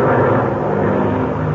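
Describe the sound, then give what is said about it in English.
A loud airplane engine roars steadily with a thick, droning buzz as the plane pulls up and then dives down in front of a herd. There is no talking, just the continuous engine noise throughout. “All right, now I'm pulling up, and then down we go, right in front of them.”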